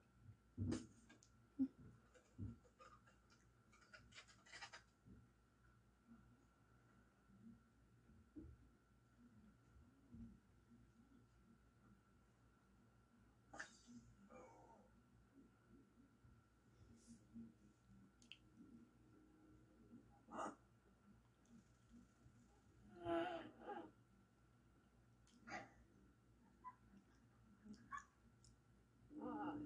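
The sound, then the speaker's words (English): A kitten paws and plays with a camera, producing irregular soft taps, bumps and scuffing rustles scattered between quiet stretches, over a faint steady hum with no one talking. “It's a kitten playing with the camera.”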